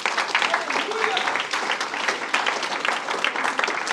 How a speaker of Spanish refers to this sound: Hermano, por eso la Biblia dice, sí, denle un aplauso al Señor.